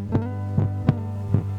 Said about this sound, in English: Hearing the heartbeat for me is very bittersweet because of the morning of the day that he passed. But I would never give it up. How strong it sounds. It truly is a beautiful sound.